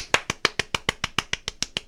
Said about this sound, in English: What sound of two hands clapping.